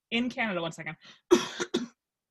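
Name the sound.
cough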